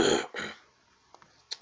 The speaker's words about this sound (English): Sorry about all the coughing